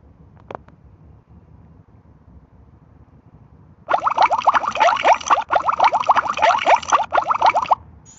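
After a few seconds of near-quiet and one faint tick, loud bubbling water churns for about four seconds in dense, gurgling bursts, then stops abruptly.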